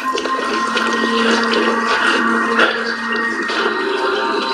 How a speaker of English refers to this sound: I don't see anything. A little bit of dripping water, some bats flying around. There's no way that can account for it.